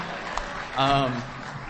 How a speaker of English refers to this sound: And while we're at it, let's keep it going. How about a round of applause for us for having to go after that?